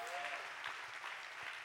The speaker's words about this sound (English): Come on, clap your hands like you got some energy. Come on, clap your hands. Come on, clap your hands.